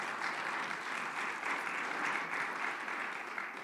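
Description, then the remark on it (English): An audience claps their hands unto the Lord in a steady, dense wash of applause, many overlapping claps blending into a continuous crackling roar with no speech. “Oh, if you believe that, clap your hands unto the Lord.”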